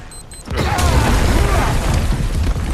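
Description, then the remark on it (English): After a brief quiet moment, a bomb set by Jesse explodes loudly to breach an exit door, giving way to a heavy, rumbling roar with crackling debris that continues steadily until the end. “Stand back then. I'll set the bomb.”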